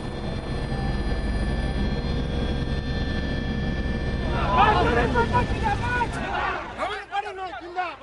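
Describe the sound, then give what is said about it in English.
A helicopter's loud, steady engine roar and rotor drone fill the scene in Kalahandi after a trip of almost 350 kilometers, while a crowd of voices rises over it in the second half and the engine noise drops away near the end. “We have traveled almost 350 kilometers by helicopter to this Kalahandi Lok Sabha constituency where Naveen Patnaik has just landed”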